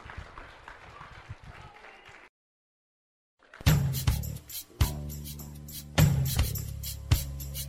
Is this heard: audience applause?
yes